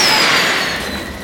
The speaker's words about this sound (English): They attach the fireworks to the wagon, three on each side, and light them.